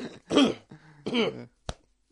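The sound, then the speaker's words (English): A voice imitates a miner's rough, hacking cough: two strained, phlegmy bursts, followed by a short sharp click-like hack, with no words spoken. “He's a miner. Miners have coughs.”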